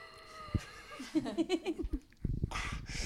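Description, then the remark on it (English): A voice imitates strained, distorted mechanical breathing through a damaged breathing apparatus: a run of short, rhythmic wheezing gasps, followed by a long, hissing rasp of air, fairly loud. “From the rubble, she can hear the distorted breathing of Vader”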